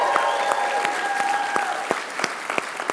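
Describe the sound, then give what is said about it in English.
A crowd claps and cheers steadily to welcome people watching from an overflow room: a dense wash of hand claps with sharp individual slaps popping out and sustained high shouts or whistles sounding over the roar. “It's where the people go when we run out of room, and I need you to give them a big cheer so they can hear it all the way over there.”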